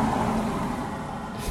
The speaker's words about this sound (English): I'm sure you would have heard that car just drive past.